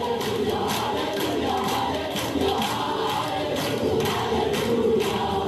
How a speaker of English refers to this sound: For security reasons, we cannot show you their faces, but you can hear the sounds of a rising chorus. In this exclusive video obtained by CBN News, the men and women spend the next several hours singing and praying.